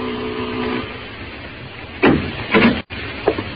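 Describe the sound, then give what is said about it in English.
A brief buzzing doorbell rings at the manager's door of a seedy hotel upstairs over a Chinese laundry, then a pause and a few muffled knocks and rattles, like a door being handled. No one speaks. “At the head of the stairs, the door marked manager. I rang the bell.”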